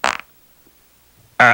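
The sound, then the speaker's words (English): Two fart sounds split by a second of near silence: a short, sputtering noisy burst first, then a loud, buzzy, tonal blast cut off at the end. No one speaks. “And then you farted.”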